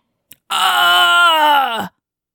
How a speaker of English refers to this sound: Sorry if I screamed in your ear.